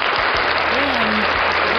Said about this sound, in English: Imagine, that system came out of the brilliant mind of a woman. I mean, that deserves like a round of applause, you know.